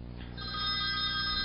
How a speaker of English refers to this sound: Oh, phone call.